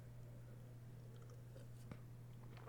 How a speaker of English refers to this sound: Sorry, I had to take a quick sip there.